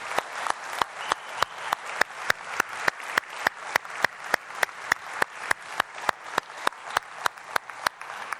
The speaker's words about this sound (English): Just give these guys a clap.